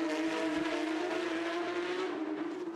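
Loud, sustained engine noise from Porsche Carrera Cup race cars on a street circuit in Toronto, 2022, with a steady, high-revving whine that holds nearly constant pitch throughout, continuous, with no voices.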